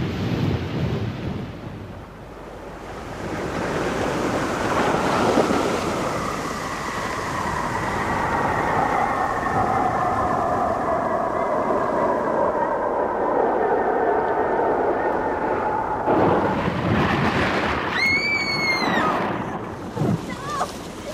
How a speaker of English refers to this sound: 500 feet. We're going to hit the water about a quarter of a mile off the beach.